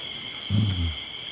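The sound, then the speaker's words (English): Crickets chirp at night in a steady, continuous high drone throughout, while a brief, deep rumbling sound swells up in the middle and fades away. “And when we start to see this, when we hear the crickets, we hear the sound that is there, and it's like we hear the dark of the night.”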